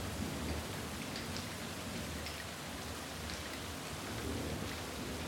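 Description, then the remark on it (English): Steady, heavy rain begins to pour down harder in a dense, continuous hiss, with a low rumble underneath like thunder. No voices, just the constant wash of falling water. “And then you hear it. The rain.”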